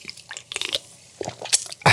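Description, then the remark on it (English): Wet sipping and small mouth sounds with faint fizzy crackles as someone drinks orange mango Spindrift sparkling water, a few quick slurps spread over two seconds, ending in a brief louder burst of hissing bubbles. “Just some orange mango Spindrift.”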